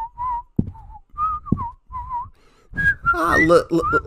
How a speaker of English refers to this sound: Whistle something happy. Rod tapped his foot and bobbed his head along with the whistling.